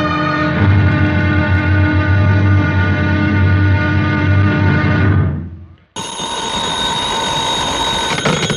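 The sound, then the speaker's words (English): A house telephone rings loudly and steadily for several seconds, cuts off briefly, then a second, brighter ring starts up and continues. No one speaks. “There must be something the matter with the house phone. I thought I rang a different room.”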